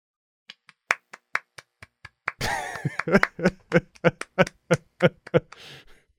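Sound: hand clapping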